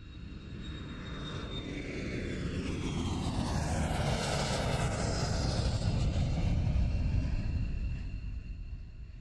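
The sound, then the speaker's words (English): A steady, enveloping airplane engine drone fills the cabin at night among sleeping passengers, a dense low roar that swells slightly in the middle with faint shifting whines on top, then eases back. No one speaks. “We're in an airplane cabin. It's night.”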